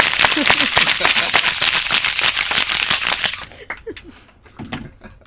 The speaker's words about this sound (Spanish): Vamos a darle un aplauso, por favor. Espera, espera, espera, ella se la merece.